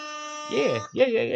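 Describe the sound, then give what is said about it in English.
A loud, sustained buzzy air horn blast blares steadily, and after a moment voices start over it as the horn keeps going to the end. “Air horn for Tyler Perry.”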